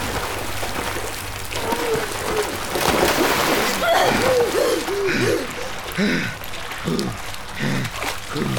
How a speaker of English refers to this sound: It's okay. The water's falling out. The water's going away.